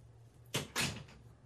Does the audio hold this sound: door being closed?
yes